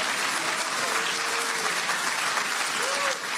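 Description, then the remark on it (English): A large crowd at a Republican presidential campaign rally in Iowa gives a standing ovation, dense clapping filling the whole stretch at a loud, even level, with a few faint cheers and whistles rising above it. “Big standing ovation there from his crowd.”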